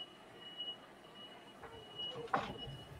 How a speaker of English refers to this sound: Someone's beeping some kind of a forklift. I thought that was you. I did. Get out of my way. Pretty much. I don't know if you can hear it, but they're like straight up beeping like crazy. Yeah. I hear it.